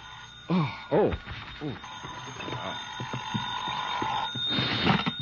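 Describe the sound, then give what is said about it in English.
A telephone rings the next morning with a steady, bright bell tone that holds for a second or two, preceded by brief voices and a slightly muffled, old-recording quality. “I guess I was still thinking or dreaming about it when my phone rang the next morning.”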